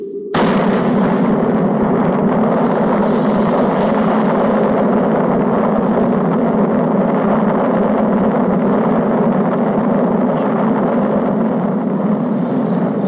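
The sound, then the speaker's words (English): A massive atomic bomb test explosion in South Australia bursts in abruptly, then becomes a loud, continuous deep roar and rumble that stays steady and overwhelming for over ten seconds, with no voices. “Then the bomb went off. The smoke went up.”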